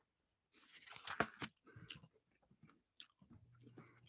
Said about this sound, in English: I'm just munching a couple of sunflower seeds real quick.